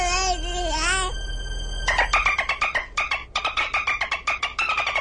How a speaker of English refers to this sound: So the baby peanut is making dolphin sounds.